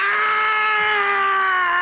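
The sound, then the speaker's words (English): A man lets out a loud, sustained cry of pain after being hit on the head, one steady drawn-out yell held for nearly two seconds, strained, in a quiet neighborhood. It's a voice acting out the scream. “And he starts yelling out in the quiet neighborhood, "Ah!"”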